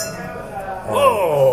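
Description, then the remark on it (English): Glasses clink together in a toast at a bar, a bright ringing chime that lingers briefly amid faint background chatter. “Cheers. Cheers.”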